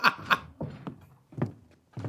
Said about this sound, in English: Chapman's gone for the note. You can hear his footsteps retreating.